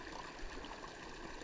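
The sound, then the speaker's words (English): A mountain stream flows steadily, a continuous soft rushing and burbling of water that holds an even level throughout, with no voices present. “But what I was thinking of was this mountain water and consciousness.”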